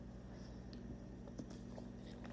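A soft sip of hot liquid from a cup, a brief wet slurp and faint mouth sounds over a low steady hum, with no talking.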